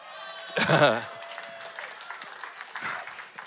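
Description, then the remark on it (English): An audience breaks into steady, crackling applause that fills the whole moment, with a brief voiced whoop rising over the clapping near the start. “Listen, I'm just gonna say that's worth more than a golf clap.”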